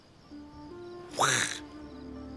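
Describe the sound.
A person voicing the character Ling in a movie lets out a single loud, nasal quack imitating a duck, a brief raspy burst standing out over a quiet, steady background hum.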